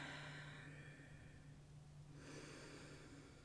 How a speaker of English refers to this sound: in through the nose and out through the mouth as we blow off a little steam and let go of some things that may be taking up space that's not serving us at this time.